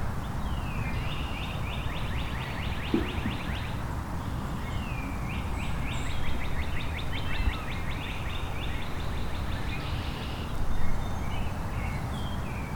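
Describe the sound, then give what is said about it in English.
A northern waterthrush sings loud, ringing phrases of rapid, repeated chips that accelerate, heard twice from nearby, over steady low outdoor rumble with other faint bird calls. “There we go. Northern water thrush.”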